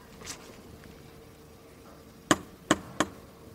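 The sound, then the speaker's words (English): Three sharp, loud knocks on a front door in quick succession, landing near the end after a stretch of quiet; someone is inside but nobody answers. “Let's give it a little knock.”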